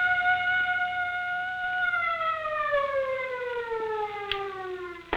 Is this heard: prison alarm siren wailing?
yes